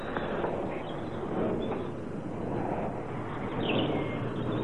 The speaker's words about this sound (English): So I was planning to share with you the song of the birds in the morning. Enjoy your winter.